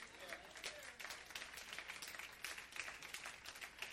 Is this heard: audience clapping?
yes